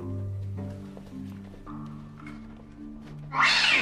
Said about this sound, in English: What is up with that cat? Is someone throwing it? Let's not keep moving, because there is an insane cat down here.